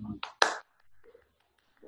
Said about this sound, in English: Yes. Thank you. One hand clap. See? Thank you.